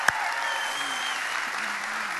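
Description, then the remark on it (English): A crowd at Seacoast gives a rowdy round of applause for the new Conway campus launch, with dense, continuous clapping and scattered cheers, holding at an even loudness throughout after a sharp burst at the very start. “So we kind of just did it, but what I want to invite us and all of the campuses to do is join them and giving them a rowdy round of applause.”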